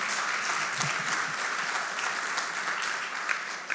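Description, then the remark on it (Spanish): Steady, dense applause from many hands clapping at once, a continuous bright crackling wash that stays even in loudness for several seconds with no voices over it. “Dar un aplauso si quieres, hermano.”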